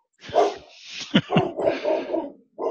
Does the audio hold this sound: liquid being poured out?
no